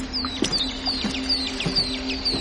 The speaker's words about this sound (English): We hear more birds. Doubled again, though first time through we probably would never notice as much.